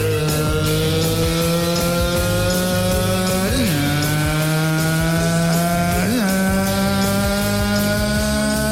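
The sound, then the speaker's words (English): A voice imitates a car engine with a steady, buzzing drone lasting nearly nine seconds, broken by two brief rising revs partway through. “Sounded like a car, didn't it? Been thinking about doing that all week.”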